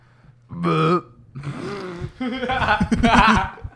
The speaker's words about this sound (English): No, I burped. I had to let it out. I swear, I wouldn't do that.